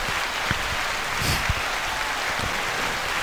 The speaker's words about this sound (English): Please give a round of applause, ladies and gentlemen.